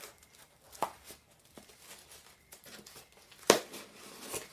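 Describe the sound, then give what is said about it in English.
Crinkly packaging being cut open with a pair of scissors and torn, with scattered rustles and a few sharp snaps and rips, the loudest near the end; no one speaks. “Oh, I need to get a knife instead of... pair of scissors.”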